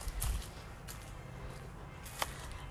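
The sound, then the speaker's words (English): Footsteps of a person walking outdoors into a backyard on a gorgeous day: a few irregular, crisp scuffing steps over a low, steady rumble, with one sharper click near the end and no talking. “And just, excuse the sound, I'm just going to walk into the backyard here.”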